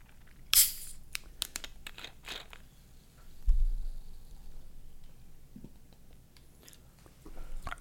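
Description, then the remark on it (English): A bottle of sparkling Ozarka Triple Berry Natural Spring Water is cracked open with a sudden sharp hiss, followed by scattered crinkly plastic clicks and a dull thump, with no talking. “That's the cold, crisp taste of sparkling Ozarka Triple Berry Natural Spring Water.”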